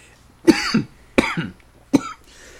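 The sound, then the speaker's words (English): Three harsh, hacking coughs burst out in quick succession, each followed by a brief gasp-like tail, with short quiet gaps between them and no talking. “Apparently it was cough. I'm choking on my own opinion.”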